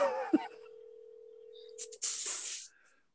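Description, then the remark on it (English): An unanswered phone call: a single steady electronic ring tone drones for about a second and a half, clear and moderately loud, then cuts off into a short, harsh burst of noise. “Answer the phone, you fuck.”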